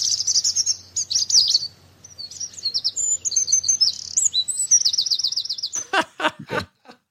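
A birdsong sound effect used to censor speech: a burst of bright, busy birdsong, rapid chirps and warbling trills tumbling over each other for several seconds, ending in a few sharp, choppy bursts of sound.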